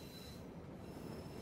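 A train approaches with a steady low rumble while a thin, high-pitched wheel squeal holds throughout, fairly faint and continuous, with no voices.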